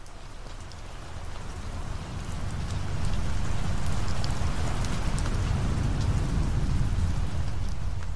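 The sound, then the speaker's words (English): Steady, heavy rain from a major storm front sweeping across the US East Coast on the evening of Monday, September 10, 2001, pours down in a dense hiss, with a deep low rumble swelling beneath it partway through and holding as the storm grows louder. No voices. “A major storm front swept across the East Coast on the evening of Monday, September 10th, 2001.”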